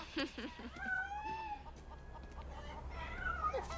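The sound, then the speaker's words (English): Several chickens cluck and squawk in short, uneven bursts over a steady low background rumble, with a couple of longer drawn-out calls mixed in. “I hear chickens.”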